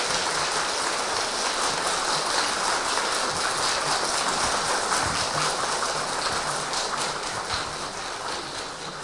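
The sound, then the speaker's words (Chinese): Warm, sustained applause from a large lecture audience welcoming Khenpo Sodargye Rinpoche before his talk on spiritual practice and university students' happiness: dense, steady clapping that holds at an even loudness for several seconds, easing off slightly toward the end, with no voices over it. “下面就让我们以恭敬心和幸福愉快的心来聆听大师的开示，也请我们用热烈的掌声。”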